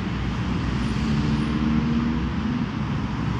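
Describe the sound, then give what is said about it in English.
Steady street traffic ambience: a continuous, loud low rumble of passing cars and engines with a faint hum on top, unbroken and even throughout, with no voices. “This is the street.”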